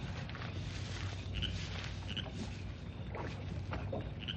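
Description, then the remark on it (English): Oars dip and swish through calm lake water as a boat is rowed out, in a steady, unhurried rhythm, with occasional small splashes and creaks over a low continuous wash, quiet. “He left the boat over there. I'll just row out and be sure of what he's doing.”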